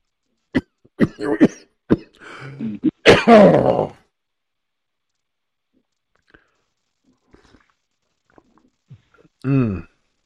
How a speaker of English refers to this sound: Went to take a sip of coffee down the wrong way. Mm. I hate when this happens. Take one little sip of coffee, it goes down the wrong way, and then you start coughing your head off for a week.